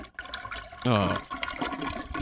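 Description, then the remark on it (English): A toilet flushing sound effect of a backed-up toilet: a short, loud gush of swirling water that rises then tapers into a gurgling drain, with a faint murmur of voices behind it. “That's a bruh, backed up toilet.”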